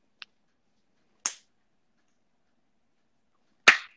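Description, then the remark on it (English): Three sharp hand claps with uneven gaps between them, the first one quieter and shorter than the other two, each a crisp snap with nothing else around it. “I don't know why I just clapped, but”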